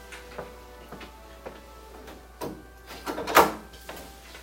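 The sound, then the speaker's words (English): Scattered light clicks and handling noises lead up to a door being shut, ending in one firm thud with a brief rattle, then quiet. “I'm going to shut this door first.”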